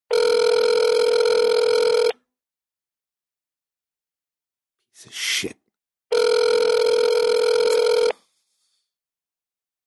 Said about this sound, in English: No identifier. Oh, come on. Sunday, dude. Pick up the fucking phone.